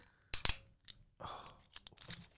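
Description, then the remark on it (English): A screw-cap wine bottle being opened: two sharp, loud cracking snaps as the seal breaks, then a softer, gritty twisting crackle with a few small ticks. “Oh, you're opening the wine at the same time.”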